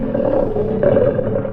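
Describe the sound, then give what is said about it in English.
A Bengal tiger named Prince Rajput, weighing 462 pounds and 9 feet 7 inches long, kept with a circus in New Hampshire, gives a deep, sustained, loud roar with a rough rumbling texture that holds steady for a second and a half without any voices. “A Bengal tiger. Name's Prince Rajput. Weight, 462 pounds.”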